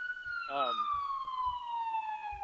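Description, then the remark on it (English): An emergency vehicle siren on a San Francisco street wails loudly as it passes, its steady tone slowly dropping in pitch, with a brief voice and low periodic thumps underneath. “Well, and the funny thing is, so on that note, and there's some sort of siren that's about to come by, so apologies.”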